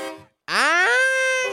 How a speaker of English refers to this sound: And then I put a fucking train horn on there for when I do Custody of the Week.